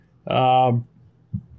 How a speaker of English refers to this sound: See, burping already. Yeah, I got some Elysian Space Dust.